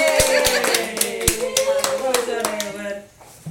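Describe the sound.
A small group applauds with scattered, uneven hand claps for about three seconds, mixed with voices cheering and talking over them, before the clapping trails off.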